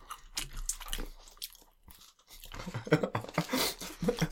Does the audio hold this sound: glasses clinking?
no